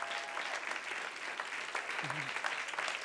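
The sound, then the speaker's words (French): A large audience, asked to get up on their feet, claps and applauds steadily, a dense wash of many hands, with faint voices and a brief cheer rising through the clapping. “Clap for them. Clap Applaudissez well.”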